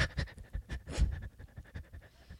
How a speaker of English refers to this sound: I'm just practicing my breathing for Lamaze class.